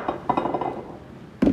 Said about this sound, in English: Pour your 12 ounces of tequila in. 12.